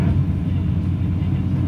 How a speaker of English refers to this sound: And now we're behind as you can hear probably, a grader truck, not truck, but like a road grader, and, I don't know what is he actually plowing? Yeah, it looks like he is, eh? Yeah, he's like grading. Like scraping like the scraping the road,